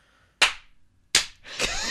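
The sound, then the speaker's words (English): Three sharp slaps on the thighs land at uneven intervals, each a crisp smack with a short ringing decay. The last one runs into a rougher, sustained rustle. “As I slap my thighs.”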